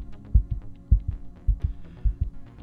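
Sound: heartbeat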